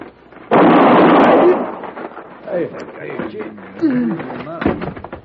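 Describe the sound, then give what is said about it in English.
A single sharp, loud shot from a two-shot Derringer pistol cracks out with a brief rough tail, and then men start talking in tense voices. “Where'd you get that Derringer? Come on, stay back. It holds 2 shots. Now who wants the second one?”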